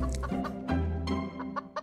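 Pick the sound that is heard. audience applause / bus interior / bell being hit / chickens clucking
chickens clucking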